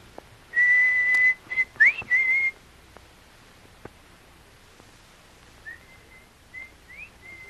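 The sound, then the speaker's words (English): A loud human signal whistle holds a steady high note with a quick upward flick, then after a pause a fainter answering whistle follows with the same pattern. “…, try your signal whistle.”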